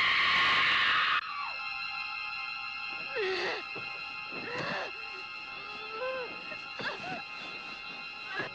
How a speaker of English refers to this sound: Good scream.